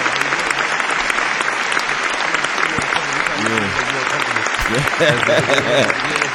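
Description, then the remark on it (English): A steady round of applause from a crowd welcoming a guest who has arrived in the building. Dense clapping fills the whole clip at a fairly loud level, with some voices and cheers mixed in toward the end. “Round of applause for my nigga, man.”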